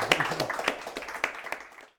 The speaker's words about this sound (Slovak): A myslím si, že si zaslúži potlesk.